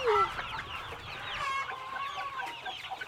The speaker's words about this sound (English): This is our chicken mansion. The chickens are doing what chickens do.